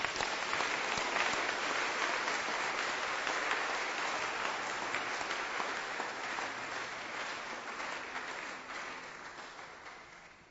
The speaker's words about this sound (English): It's a good place for you to clap your hands for the Lord.